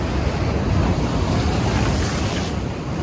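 Loud, continuous roar of ocean surf breaking against sharp rocks on the coast of Australia, a churning wash of water with gusty wind noise and a slight surge near the end; no one speaks.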